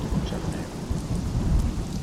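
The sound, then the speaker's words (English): Heavy rain pours steadily with a deep, rumbling thunderstorm underneath, a dense continuous roar with low booming energy throughout and no voices. “It might rain the whole rest of the time we're here.”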